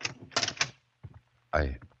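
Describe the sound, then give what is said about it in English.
An unlocked door to an upstairs room is opened with a quick burst of clicking and rattling from the latch and handle, followed by a pause, a soft knock, and a short voiced sound at the end. “I thought the door was locked.”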